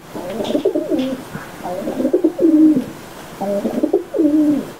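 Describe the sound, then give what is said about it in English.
A pigeon coos in three low, throaty phrases, each a rolling, burbling series of notes with short pauses between, clear against a quiet background. “This is what a pigeon sounds like.”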